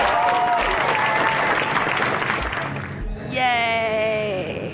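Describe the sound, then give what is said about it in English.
A crowd applauds steadily and loudly for several seconds after a stand-up comedy set, a dense wash of clapping with high, wavering cheers and whoops rising over it toward the end. “Clap, clap, clap, clap.”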